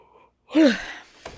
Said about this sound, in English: No, I actually had to yawn.